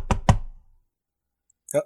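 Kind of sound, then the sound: household object, knocking on a door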